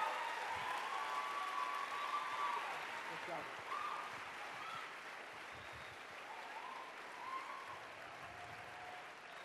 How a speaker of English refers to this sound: That was worthy of a lot of applause. That's good. Good amount of applause there. Thank you very much.